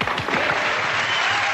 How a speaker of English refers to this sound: Okay, cue the clap now.